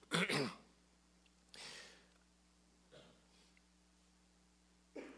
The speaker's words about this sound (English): excuse me for one second. Pray that I don't cough the whole service. So just take a second.